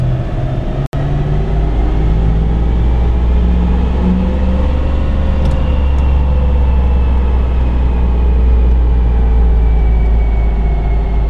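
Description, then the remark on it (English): A diesel pickup truck engine roars loudly and steadily on a dyno, making about 200 horsepower at 1800 RPM, its deep drone slowly climbing in pitch as it revs under load, with a sharp click near the start. “the truck's making 200 horsepower right now at 1800 RPM.”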